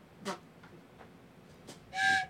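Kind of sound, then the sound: vocal imitation, imitated train whistle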